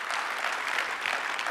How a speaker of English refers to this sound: It's okay to clap your hand right there. If you believe it, it's okay to clap your hand. Trust God, clap your hand, believing that he's a way out of our way.